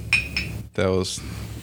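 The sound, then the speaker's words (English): Two quick, bright clinks of a whiskey glass full of whiskey ring out in close succession, followed by a short burst of voice and rustling. “That was a glass full of whiskey.”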